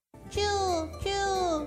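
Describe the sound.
A voice imitates a mouse squeak the Japanese way, "chu chu", with two drawn-out, high calls in a row, each sliding slightly downward in pitch, fairly loud.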